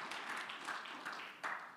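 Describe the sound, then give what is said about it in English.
A crowd at a church sermon claps hands together at the preacher's call in a dense, steady patter of overlapping claps, fairly soft, with no one speaking over it. “Clap your hands if you believe that today.”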